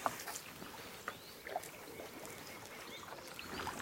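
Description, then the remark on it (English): A small boat moves quietly through the completely still water of the River Derwent in North Yorkshire on a sunny day, its ripples making soft lapping and gentle splashes, with faint outdoor air around it; no one speaks. “The ripples are those caused by my boat.”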